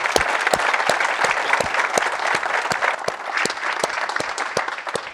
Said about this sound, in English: please just join me in a round of applause for this excellent fourth section.